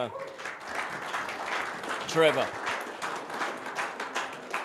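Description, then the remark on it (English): Steady audience applause welcoming a pastor to speak, a dense crackle of many hands clapping at even loudness, while a man's voice briefly calls out over it partway through. “So put your hands together and just welcome”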